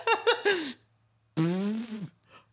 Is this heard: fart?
yes